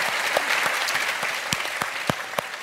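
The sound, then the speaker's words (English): Steady audience applause, a dense wash of many hands clapping with a few sharper individual claps popping out, sustained at moderate loudness without any voices. “But the tragedy, I think, in our country, and I love the way you put it, and that's definitely worthy of applause.”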